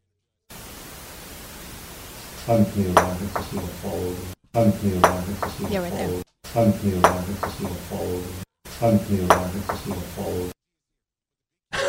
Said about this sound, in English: Yeah, you hear it sounds like a ping pong ball being dropped right at the very beginning here.